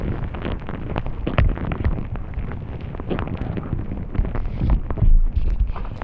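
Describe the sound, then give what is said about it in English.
Dung beetles moving inside a cow pat, picked up by a hydrophone: a dense, continuous wash of crackles, scrapes and soft thumps over a low rumble, steady and muffled throughout, with no voices. “This is what dung beetles actually sound like as they're moving around inside a cow pack.”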